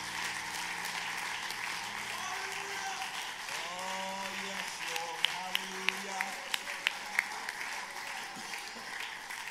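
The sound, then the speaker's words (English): An audience claps hands in praise to the Lord before being seated, a dense, steady wash of applause, with scattered voices and a few sharper individual claps standing out near the end. “Everybody give the Lord a good hand clap of praise and let's worship him before we're seated.”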